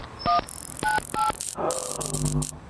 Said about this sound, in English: Oh, look, there's a keypad. Maybe I can just enter my phone number.